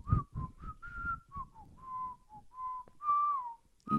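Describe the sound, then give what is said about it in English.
Someone whistles a song melody, a string of clear sustained tones that slide and step between pitches, with short breaths between phrases and no talking. “Okay, let me try to whistle again.”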